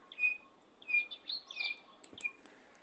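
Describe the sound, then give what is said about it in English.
A male and female batis bird pair call back and forth, the male starting and the female answering, with clear, high whistled notes spaced about every half second and soft ticking clicks in between, fairly quiet, no voices. “It's quite amazing the way these birds kind of like just talk to their to themselves.”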